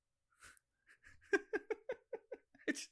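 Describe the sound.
A person imitates a monkey with a rapid string of short, hooting vocal bursts that build in loudness, ending on a sharp higher squeal, with no spoken words.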